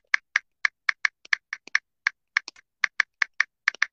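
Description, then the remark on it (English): Steady, uneven clicking of keys on a computer keyboard as someone types to check in with their teams, about twenty crisp taps in quick succession, clear with no voices. “Y'all hear me typing?”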